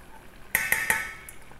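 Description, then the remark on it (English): A steady hiss from a hot pot as about 80 grams of sugar is poured in and swirled to melt it, broken by three quick scraping taps in a row and a fainter one after. No one speaks. “And just give it a swirl to melt it.”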